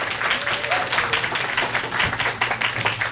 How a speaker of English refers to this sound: We'll try to not make our local audience here applaud too much. We don't want to get them all tired up,